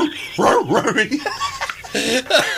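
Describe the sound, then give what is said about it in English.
Hunting dogs, called in to hunt a bear, bark and bay excitedly, a rapid jumble of overlapping yelps and howling calls, loud, with no pause between them. “Well, a trap was set at the campground just in case that bear came back, and dogs were called in to initiate a hunt.”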